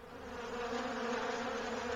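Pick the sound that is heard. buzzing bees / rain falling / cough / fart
buzzing bees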